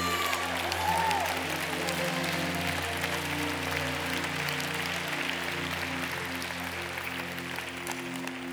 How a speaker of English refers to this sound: Come on, clap your hands. That's what the Bible told you to do.